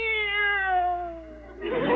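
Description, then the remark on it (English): A single drawn-out meow from a cat named Minerva, clear, its pitch sliding slowly downward for over a second before giving way to a short burst of hissy noise. “Meow! This cat is dog happy.”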